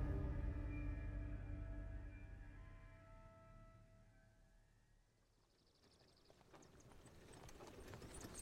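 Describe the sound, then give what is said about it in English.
The hooves of two well-kept hackney horses clip-clop at a steady, brisk pace as they pull an approaching horse-drawn carriage, growing louder in the second half after sustained tonal sounds fade away, the coachman pulling up the reins as they come to a halt. “As we shift away from that moment in time, we watch a horse-drawn carriage pulled by two well-kept hackney horses, the coachman pulling up the reins as they come to a halt.”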